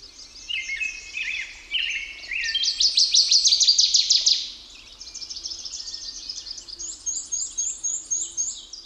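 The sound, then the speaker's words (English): Birds sing continuously in bright, rapid trills and chirps, with a loud, dense burst of song in the middle followed by steady, repeated warbling phrases. No one speaks. “In a time when human and avian habitats are changing rapidly, by simply giving our attention to the songs of birds, we are invited into a larger conversation and an embodied knowledge of place.”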